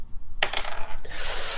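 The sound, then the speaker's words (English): Dice are rolled for a survival check in a game, coming to 13. A quick clatter of small hard objects tumbles and rattles on a surface, a burst of bright clicking taps that starts abruptly and settles into a fainter rattle, with no voices. “I rolled a 13 survival check.”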